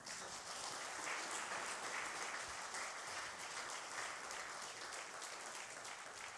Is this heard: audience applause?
yes